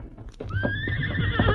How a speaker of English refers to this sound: Listen, Tonto. Ah, you hear horse. Run plenty fast. Yes. Seems to be coming along the trail from the west. Ah, you see him now. The rider seems to be hurt.